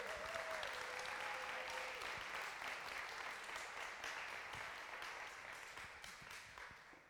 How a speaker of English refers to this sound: So can you please give them a round of applause?